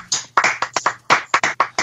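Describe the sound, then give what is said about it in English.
A short burst of hand clapping, around ten crisp claps in a quick, slightly uneven rhythm, moderately loud, with no talking over it. “I was going to clap, but my fucking phone was in my hand.”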